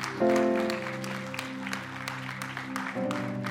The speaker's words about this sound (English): Amen. Go ahead. Clap.